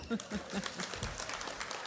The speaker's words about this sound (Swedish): En applåd!